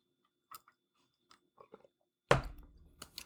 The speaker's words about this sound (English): Personally, I am drinking some Zevia ginger soda. I don't know if you guys can hear, get a little ASMR moment. But I'm going to take a sip of this